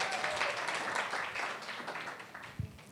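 An audience applauds in a dense, steady wash of overlapping claps that stays fairly loud for a few seconds, then thins slightly toward the end, with no voices heard.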